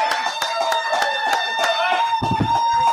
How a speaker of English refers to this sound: Hey, Paul Alexander and Dave Lapham, two Cincinnati football legends. Give them a big round of applause, guys.